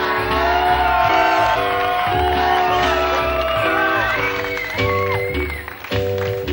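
A loud audience cheers, whoops and applauds continuously, with steady band music playing underneath the crowd noise throughout.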